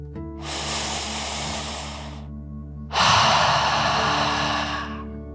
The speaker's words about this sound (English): Before we begin our story, let's relax by taking a nice deep dragon breath. Breathe in through your nose, filling up your lungs, and then out through your mouth, imagining you are breathing fire, like a dragon. Ready? Deep breath, in and out.